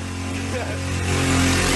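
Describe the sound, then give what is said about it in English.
A small scooter engine drones steadily, its buzzing pitch holding firm before swelling louder toward the end as it revs. “Little motorcycle. This is on a scooter.”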